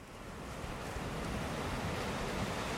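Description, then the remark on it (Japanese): Steady roar of ocean waves washing in continuously beneath a house that stands over the sea, a broad, rushing wash of surf with some wind noise, even in loudness, with no voices. “波の音です。”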